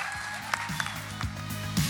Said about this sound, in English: Well, thank you so much. Let's give a round of applause to our panel.